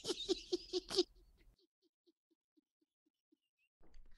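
Someone chewing chocolate chip cookies: about five loud, crisp crunches in quick rhythm, then a trail of faint, soft clicking chews that taper off into quiet. No one speaks.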